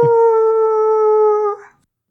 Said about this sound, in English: River, you actually see a wolf appear much closer than the other howl that you hear in the distance.